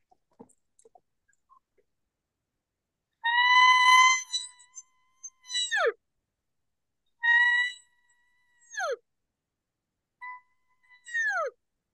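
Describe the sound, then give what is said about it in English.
A reed call blown to imitate a cow elk, made by hissing air into the call so the reed sounds: three nasal, harmonic mews, each a steady tone that breaks into a quick downward squeal, with short pauses between calls and no talking. “I'll just put it in and I'll start hissing, and then the reed will automatically just start making noise.”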